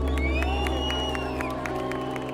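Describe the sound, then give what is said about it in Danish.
A crowd of several thousand, mostly children, on stone benches in a park amphitheater in Ramallah, West Bank, cheers and claps at acrobatic circus stunts at a festival opening gala: a dense steady roar of voices with repeated sharp claps and occasional high shouts, sustained and fairly loud throughout. “De klapper, griner og gisper er akrobatiske stunts, der bliver udført af cirkusartister fra hele verden, inklusiv Argentina, Mexico, Tyskland og Danmark.”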